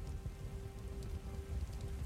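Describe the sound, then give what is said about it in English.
Steady rain patters on roof shingles overhead, a continuous soft drumming with a low, even hum beneath it and no voices. “All that's left is rain on the shingles above you”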